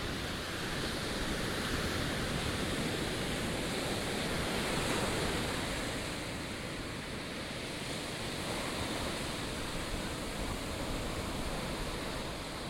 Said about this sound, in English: Listen to the soothing sounds of the ocean waves off the Outer Banks.